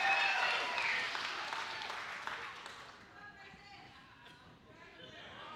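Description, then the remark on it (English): A burst of dense audience applause, loud and crackling at first, then thinning out and fading over several seconds into scattered claps and murmuring voices. “Oh, give it up.”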